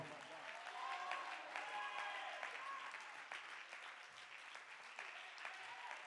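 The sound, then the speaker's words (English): An audience claps their hands to give God praise for several seconds, a dense, even patter of many hands with a few faint voices and cheers mixed in, holding at a moderate level throughout. “Let's just clap our hands and give God the praise for a minute.”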